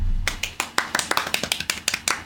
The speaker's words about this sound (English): How'd you trombonist clap? This is more of a golf clap.